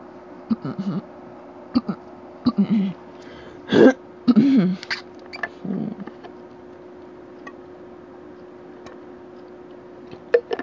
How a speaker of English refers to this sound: Before I go on, let me just take a quick water break. I've read a lot of things out loud and definitely want to, like, you know, clear my throat a little bit. So give me guys just a few seconds.